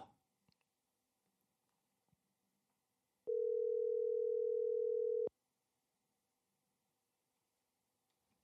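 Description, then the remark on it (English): A phone line rings once, a steady two-second electronic tone, with a few faint clicks before it and a sharper click at the end, as the show Low Budget Live places a call to Brandon Cobb. Quiet otherwise, with no talking. “We're going to get him on the phone right now.”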